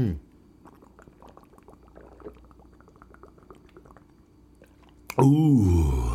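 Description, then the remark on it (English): Wet gulping as someone drinks water in a steady run of quick swallows, ending in a loud, breathy sigh of relief. “I know y'all heard every last fiber of that water intake, man.”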